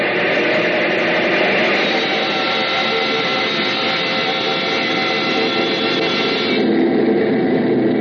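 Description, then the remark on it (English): A loud, continuous bomber engine roar as the number one engine is brought up to maximum RPM at an altitude of 30,000 feet, dense and steady with no voices, shifting slightly in tone near the end as it holds at full power. “Bring up number one engine to maximum RPM.”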